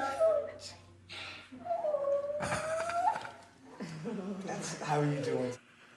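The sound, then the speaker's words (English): A dog named Lucy whimpers and barks, mixing drawn-out, rising whines with a few sharp bursts, the sounds coming in several uneven stretches over a few seconds. “That's your dog. Come on in.”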